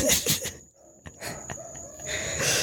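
A dog screams and cries in loud, repeated bursts, with shrill yelping wails and a thin whine running underneath. No one speaks.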